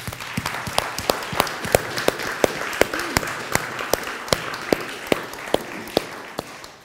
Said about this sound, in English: We are grateful for you guys. We want to say a public thank you. Can we just give them a clap?